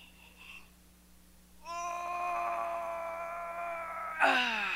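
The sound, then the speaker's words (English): A single long, drawn-out yawn from a person, a steady voiced groan that swells and then breaks into a sighing, falling exhale at the end. “Oh, yeah, that felt good. Who yawned?”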